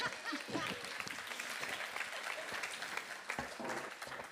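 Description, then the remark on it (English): A crowd applauds steadily, a dense wash of clapping that holds at an even level throughout, with scattered sharper claps standing out now and then, welcoming a woman coming up to share her story. “A round of applause.”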